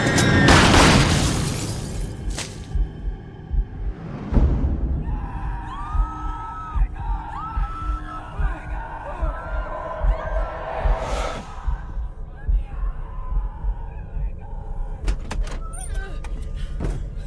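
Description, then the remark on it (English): A car crash bursts out at the start with crunching, shattering impacts, followed by scattered thuds and high, wavering screams from several passengers that continue through the chaotic aftermath. “And the camera travels from the front of the car back past the screaming passengers through her head out the back, going out to a big open field.”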